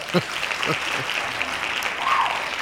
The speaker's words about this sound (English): Somebody's hand clap ready already. All right. Very eager for the hand claps. Hand claps.